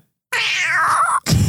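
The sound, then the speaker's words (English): A person imitates a cat with a loud, drawn-out meow lasting about a second, followed by a short burst of noise; no other talking. “Was that a cat noise?”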